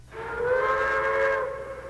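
A single long blast of a train whistle, a steady, bright multi-tone wail lasting over a second before trailing off, fairly loud and clear with no voices.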